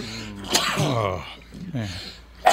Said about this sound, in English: I have to sneeze.